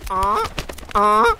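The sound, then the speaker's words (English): Two loud, nasal honks from Gary the Goose ring out, each lasting about a third of a second with a brief pause between them. “Gary the Goose? Who's Gary the Goose?”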